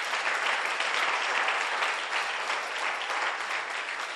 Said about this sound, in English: Why don't you appreciate the Lord with a hand clap?